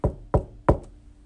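Three solid knocks on a witch's wooden front door, made with the bottom of a staff, evenly spaced, each with a short hollow ring, followed by a fainter tap trailing at the end.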